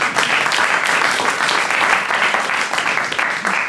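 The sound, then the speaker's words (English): A crowd applauds steadily for the KT Extinction, a dense, continuous clatter of many hands clapping at an even loudness throughout, with no voices standing out. “Give them a big round of applause there, please.”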